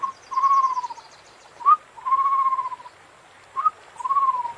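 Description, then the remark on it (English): A rock pigeon calls in a steady repeating pattern, a short rising note followed by a longer drawn-out coo, three times over. It sounds clear, with faint bird chatter behind. “When Mama and Makwelane walked home, the rock pigeon called after them.”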